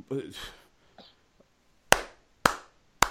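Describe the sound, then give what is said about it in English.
A slow, sarcastic golf clap: three sharp, crisp hand claps spaced about half a second apart, following a brief burst of voice at the start. “golf clap.”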